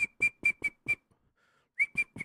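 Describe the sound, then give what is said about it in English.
A whistle blown in short, sharp blasts: five quick toots in a steady rhythm, a brief pause, then three more. Loud, with no talking. “Blow your whistle, bitch.”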